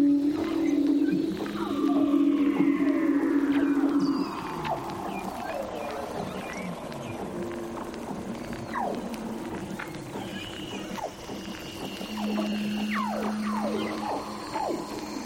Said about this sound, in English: underwater mics called hydrophones to capture these hauntingly beautiful sounds of leopard seals, Weddell seals, and orcas.